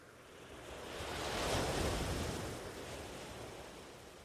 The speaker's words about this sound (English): The sand under your feet feels soft and wonderful, and the waves are quite small today.